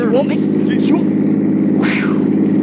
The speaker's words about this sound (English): Is that a car coming? It looks like a truck.